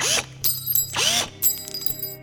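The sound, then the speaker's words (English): Repeated bursts of ratcheting and whirring as tools work screws loose from the metal panels of a clothes dryer, with short clicks and a brief rising whine between bursts, and no talking. “I thought, time to see what's going on under these panels, and I fetched my toolbox from the garage.”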